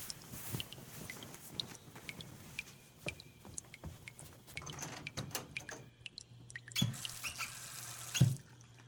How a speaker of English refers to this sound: Gotta ask Dad to fix that leaky faucet.